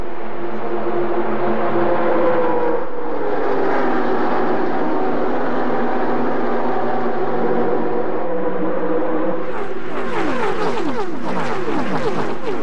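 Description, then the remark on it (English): A loud, continuous roar of 43 stock car engines racing down the back straightaway just after the green flag, with Jeff Gordon coming up to speed, their whining pitches sliding up and down, the sound growing busier and more layered toward the end. No voices. “Gordon comes up to speed as 43 cars uncoil down the back straightaway.”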